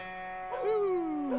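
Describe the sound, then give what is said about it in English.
A small male pet dog lets out a single drawn-out whimper that slides downward in pitch, moderately quiet, with no one talking over it. “And of course, our little doggy. There he is.”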